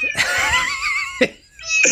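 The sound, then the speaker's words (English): A cat named Capone gives a long, wavering meow, then a brief pause and a second, shorter high-pitched meow. No one speaks. “Meow.”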